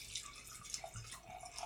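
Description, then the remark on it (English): Blanc wine is poured steadily into a glass for under two seconds, a heavy pour, a soft gurgling stream with small splashy drips on top and no voices. “I did a heavy pour today.”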